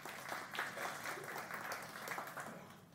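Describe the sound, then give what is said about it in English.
A crowd applauds a high school student with a steady, dense wash of many hands clapping, holding fairly even loudness for the full stretch before easing slightly at the end. “And the claps go to him because he's worked so hard in that.”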